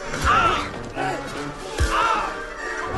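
Two heavy punches land about a second and a half apart, each a loud thud with a sharp smack, over a busy background of voices and whooshing movement.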